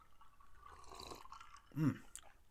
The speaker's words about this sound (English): But as I'm thinking about that, gonna have a nice refreshing sip here. Yeah, cheers.